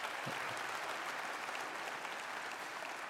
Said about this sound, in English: So now you can give a good round of applause.